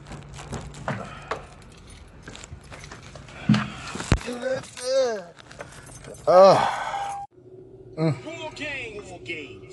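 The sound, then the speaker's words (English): Keys jangle and click as a car is started, a low engine hum running underneath, with bursts of voices breaking in over the rattling. “Get in the car. Start this motherfucker up.”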